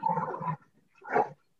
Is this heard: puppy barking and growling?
yes